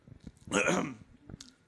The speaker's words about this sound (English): Let me clear my throat to do my favorite thing on a podcast.